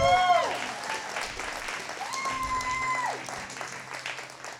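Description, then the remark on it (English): An audience at a live show claps for the show's photographer in a sustained, dense round of applause lasting several seconds, steady and moderately loud, with a few brief tonal sounds and murmurs mixed in. “A big round of applause for our photographer,”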